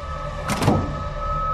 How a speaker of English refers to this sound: She locks the door behind her.